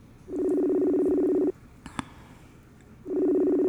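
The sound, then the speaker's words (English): A telephone call rings out on the line: two long, steady buzzing ring tones separated by a pause, with a faint click in the gap and no one talking. “Answer your phone, ding dong.”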